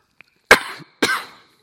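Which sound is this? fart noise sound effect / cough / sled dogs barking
cough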